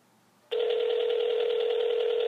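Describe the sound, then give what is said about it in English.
After a brief quiet moment, a loud, steady electronic telephone ringing tone switches on and holds without a break as an outgoing phone call rings through on the line. “We'll just keep calling him like over and over again.”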